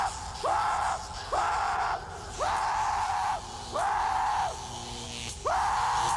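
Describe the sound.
A person screams loudly, five sustained shrieks in a steady repeating rhythm, each with a short gap before the next.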